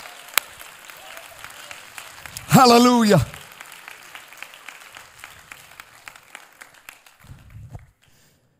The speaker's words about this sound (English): Oh, clap your hands to the Lord right now.